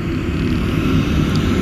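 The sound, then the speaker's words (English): A steady low rumble of road traffic fills the scene, like cars rolling by without pause. No one speaks over the continuous engine and tire noise. “Yeah, cars have been in the background. Let them mosey along.”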